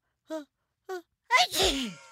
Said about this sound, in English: Thomas Edison's first short flick in 1894 was called The Sneeze, literally just 5 seconds of an Edison employee sneezing. Can you imagine everybody wanted to see it?